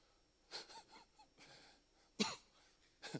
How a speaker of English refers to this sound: This week's been hard for me. I've had this cough that y'all have listened to.